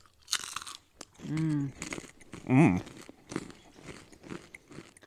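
Sharp, crisp crunching of three fried shells being bitten and chewed, a loud burst at first, then steady smaller crunches, broken by two short voiced hums of reaction.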